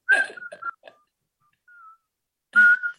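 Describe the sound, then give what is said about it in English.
A few short whistled notes picking out the tune of a song, fairly loud, with breathy, uneven bursts between quieter held tones and a brief pause before a final strong note. “I sang Take Me Out to the Ball Game, but I did the whistling part.”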